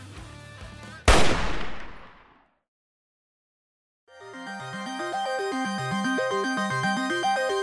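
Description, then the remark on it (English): A single loud rifle shot cracks sharply from a rifle propped against a door, firing into the door, then rings and decays into about two seconds of silence. Music plays before the shot and returns afterward. “as you kind of shoulder slam this door, you kind of fall inwards, and right behind you, a like rifle that's been like kind of not taped, but you know, put up against the door, shoots right behind you into like the door itself.”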